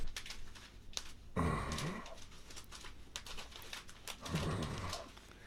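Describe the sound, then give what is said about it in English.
A voice imitates paper crumpling heard from the room next door at bedtime, dense, irregular crackling and rustling clicks that run throughout, broken twice by a short, low, angry-sounding male vocal groan. “Anyway, I hear paper crumbling and a grown man's voice.”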